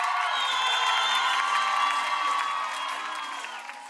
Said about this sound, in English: Yes, of course. It's helped because all people absolutely applaud. This Eastern Ukrainian crowd, they were screaming their name.